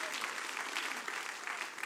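An audience at Christian Life Church claps hands to give God praise all over the auditorium, a steady, dense wash of applause, loud and continuous throughout, with no single claps standing out.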